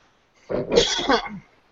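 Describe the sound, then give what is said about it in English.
One fairly loud cough, a rough, raspy burst of about a second that trails off, with quiet before and after it and no talking. “If you want to follow us on Twitter, excuse me, you can follow that cough.”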